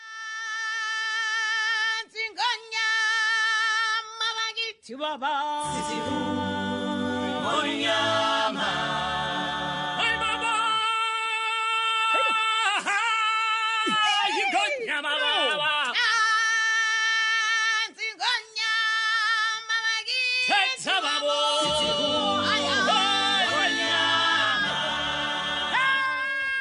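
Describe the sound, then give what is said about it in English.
The Lion King cast performs songs from the show live at NPR's Tiny Desk: strong sung voices hold long, high notes with vibrato, layered into harmonies that swell and shift, filling the whole clip at a steady, loud level. “It's a live performance of four songs from the show.”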